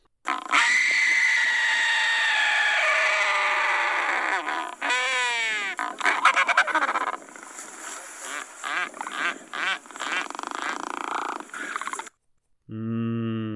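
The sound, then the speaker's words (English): An albatross courtship scream, given with massive wings held open and head tipped skyward: a long, harsh, raucous screeching call that breaks into choppy rasping bursts, followed after a brief pause by a short, clearer honking cry. “And yet others will hold open their massive wings, tip their head skyward and let out a scream, not unlike a velociraptor.”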